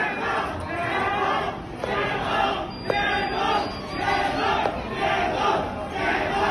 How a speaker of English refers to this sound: A similar demonstration appeared in the city of Shenzhen. There, crowds of people were heard shouting, "Stop the lockdown."